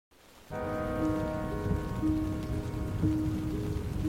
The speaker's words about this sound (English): Rain drizzled over the canyon of the South Fork of the Ogden River. It pattered on the canvas top of Heidi Posnien's Jeep as she drove up Utah State Highway 39 on the morning of Friday, June 4th, 1971.